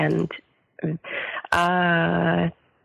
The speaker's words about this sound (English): Excuse me. I don't know why I have to keep clearing my throat. Sorry.